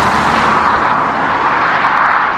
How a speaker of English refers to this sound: But this is a satisfying engine noise, and it's fun to work with, which is the other thing I like about it.